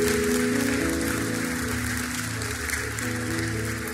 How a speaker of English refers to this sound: Now give them a great big hand clap. Look at the men coming to get right with God. Look at them.